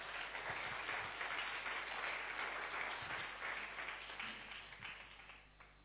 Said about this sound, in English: Can you give the Lord a clap for our brother?